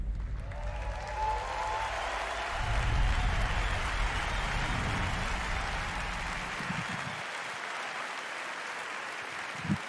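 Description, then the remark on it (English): A large audience applauds Marty Hugo and the evening's presenters, a dense, steady wash of clapping that fills the space for the full duration at a fairly loud level, with a faint low rumble underneath and no voices. “Another round of applause, please, for Marty Hugo and all of our presenters tonight.”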